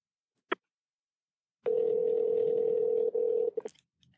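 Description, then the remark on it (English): A phone call to someone's mother rings on the line: after a sharp click, one steady electronic ringback tone hums for about two seconds, then cuts off with a brief clatter. No one speaks. “I can hear it ringing.”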